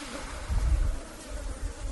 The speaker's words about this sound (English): Oh, and there's flies there, too. Close. Of course, flies are there.